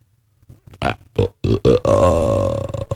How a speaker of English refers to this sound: That was the best freaking burp. Let me hear that burp again.